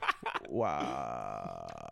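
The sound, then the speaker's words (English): A man burps into a microphone: a long, loud burp starting with a short throaty catch and then stretching into a sustained, rumbling tone for nearly two seconds. “He made me pause my story so he can burp on the microphone.”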